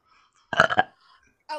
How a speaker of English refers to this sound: I can't do it. I burp.